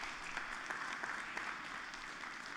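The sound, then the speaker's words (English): Sustained applause from an audience for the Lord during a morning church service, a dense steady patter of many hands clapping at an even level with scattered sharper claps standing out, no voices. “Somebody give the Lord a big round of applause this morning.”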